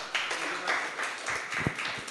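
A crowd applauds a man invited up to share his testimony, a dense wash of many hands clapping at once at moderate volume, with a few sharper individual claps standing out near the end.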